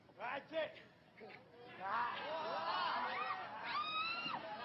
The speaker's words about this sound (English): I love the people are screaming just like, stop it.